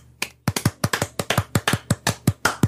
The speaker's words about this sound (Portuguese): As minhas vivas são palmas, aparentemente. Eu falei vivas e bati palmas.